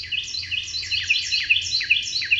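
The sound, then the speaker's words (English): A Carolina wren sings a rapid, continuous stream of high, bright chirps and trills, many quick notes tumbling together, clear over a faint low rumble. “Evolution has given birds a far more elaborate sound mechanism than it's given humans. Where we wound up with a flute, songbirds got bagpipes.”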